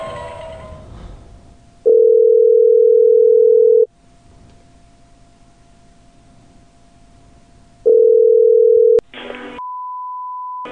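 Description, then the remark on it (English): Telephone tones as a phone call is placed, with no talking: a loud, steady low-pitched tone sounds twice in long bursts with a quiet gap between, then a short noisy crackle and a steady higher-pitched tone to the end. “Okay, baby, I'm going to call you up.”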